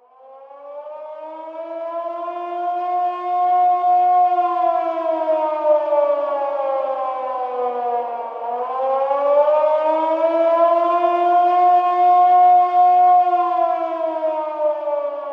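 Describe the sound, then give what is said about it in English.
A loud air raid siren in London during the Blitz wails steadily for about fifteen seconds, its tone swelling up, dipping briefly midway, then rising again. There's no talking, just the siren alone. “As the siren sounded, the Londoners calmly descended into their makeshift bomb shelters.”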